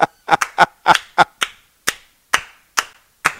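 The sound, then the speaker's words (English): About a dozen sharp hand claps with no talking, quick and slightly uneven at first, then slowing to a steadier, more spaced-out beat, each clap crisp and fairly loud. “I laugh and I clap at that.”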